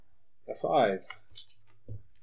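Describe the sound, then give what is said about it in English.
Three dice are rolled for sixes during a tabletop game, clattering in a brief burst of light clicks and rattles, with a voice sounding just before and a short vocal noise afterward. “Three sixes. Roll them.”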